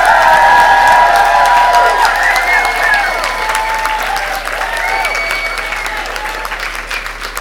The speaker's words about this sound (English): Thank you so much for coming, and please can we start with a huge round of applause, whooping and cheering to welcome the final session of FiLiA 2019.